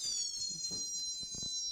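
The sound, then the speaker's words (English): An electronic door entry chime from an alarm system rings out as a door is opened, a bright, sustained tone that slowly fades, accompanied by a few soft low thumps and rustles from movement. “I'm going to open this door, and you might hear a noise. My alarm system.”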